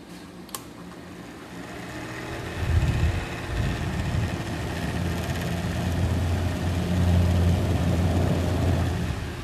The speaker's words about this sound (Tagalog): Ang tawag doon ay malamig na electric fan.